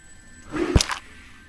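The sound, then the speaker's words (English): An arrow released from a bow swishes through the air and strikes a spider with a sharp thwack, followed by a brief rattling impact, all within a moment against a quiet background. “So Orla still has an arrow knocked, but she will draw bowstring back and release an arrow in the direction of the spider, which will hit.”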